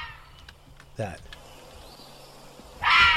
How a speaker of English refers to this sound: I don't know what a Fisher cat is. Watch this. Fisher cat. It's one of the worst sounds ever.